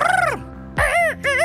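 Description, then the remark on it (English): A voice imitates a baby eagle's cry: three loud, squawking cries, each with a rising-then-falling pitch, separated by short pauses, with nothing else in the background. “It sounds like a baby eagle, y'all.”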